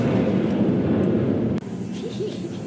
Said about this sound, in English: Pause for an airplane. It's like airplane mode here.